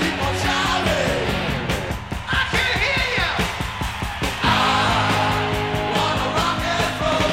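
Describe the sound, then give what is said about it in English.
Loud live rock music at a band's concert, with the crowd yelling and shouting back in bursts when prompted in the breaks before the chorus, voices blending into the dense band sound throughout. “Yeah, people shouting, you.”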